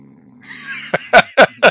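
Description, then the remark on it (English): A person jokingly imitates snoring: a drawn-out nasal inhale followed by three loud, rhythmic snorting grunts in quick succession. “did we pipe in snoring noises?”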